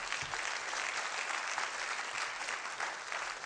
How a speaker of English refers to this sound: Would you guys stand up for just a second? And let's give these folks a big, big clap.